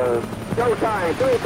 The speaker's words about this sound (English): Windows are clear, truck one and two. Full speed ahead, bring them choppers in, come on.